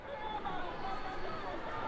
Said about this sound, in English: I'm standing in a crowd of tens of thousands of people in Glasgow, Scotland. They've gathered to try to push world leaders to take meaningful action at the UN climate conference.